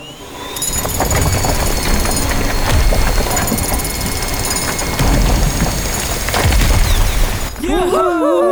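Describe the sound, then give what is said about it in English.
A loud, grinding mechanical roar with rattling, ratchet-like bursts and deep thuds runs steadily for several seconds as a Super Truck transformed into a Super Giant Drill bores through a wall at maximum strength level, then cuts off as a voice begins speaking. “Scout, activate maximum strength level. Maximum strength level activated. Now, drill the wall!”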